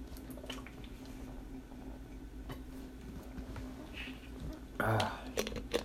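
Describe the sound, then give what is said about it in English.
Someone sips water, with soft wet mouth sounds and faint liquid drips, then a louder gulp near the end, all fairly quiet. “Water's so fucking good.”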